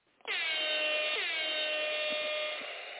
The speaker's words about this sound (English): Oh, give me a little horn blow.